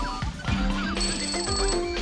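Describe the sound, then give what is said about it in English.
A telephone rings in a film scene amid a busy layer of bright, musical tones, the shrill ringing fairly loud, running steadily through the short moment with no voices. “Could you get the phone, doctor?”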